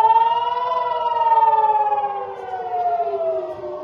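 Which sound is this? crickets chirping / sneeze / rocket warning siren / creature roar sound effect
rocket warning siren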